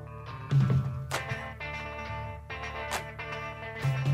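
A rock recording from the early 1970s plays: a steady, heavy bass line under layered guitars, with sharp cymbal crashes landing every second or so. No voices.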